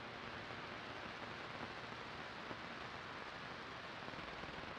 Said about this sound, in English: And here I was going to say your boyfriend was waiting for you outside, Gord called over to me, mercifully giving me the excuse to dash out into the rain like I was being pursued by a pack of hellhounds.